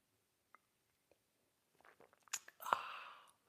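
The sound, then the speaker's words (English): A few faint clicks and small wet sounds, then a short, airy slurp as someone takes a sip of coffee in what is called the simultaneous sip, lasting about half a second before trailing off. No one speaks. “It's called the simultaneous sip, and wow, it's going to be good.”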